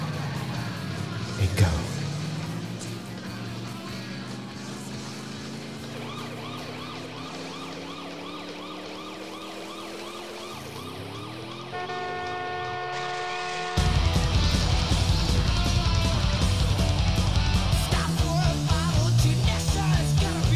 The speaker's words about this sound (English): With the whole, not necessarily with the siren in the background, but like with the car crash. That totally mimics one of Bill's favorite killer openers of all time.